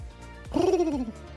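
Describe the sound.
A single hooting vocal call, a human voice mimicking a cuckoo with a smooth falling glide, about half a second long over a quiet background, on KMFM's Breakfast Buffet radio show.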